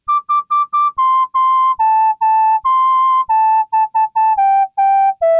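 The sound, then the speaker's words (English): A synthesized MIDI whistle tone plays a bouncy melody of short repeated notes and longer held ones, gradually stepping downward in pitch, clear with no voices. “Digging the MIDI whistle, check.”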